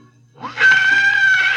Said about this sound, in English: Calm yourself, my dear Watson. I was not responsible for that last bit of cacophony. It was caused by the scraping of a carriage wheel against our curb.